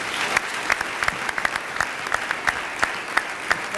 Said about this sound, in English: I think it'd be great if we could just end with one final round of applause for our panel.